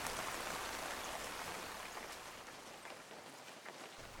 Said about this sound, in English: By the time I left the bike at the end of his drive, the rain fell harder still, and I let it pour all over me, washing away the adrenaline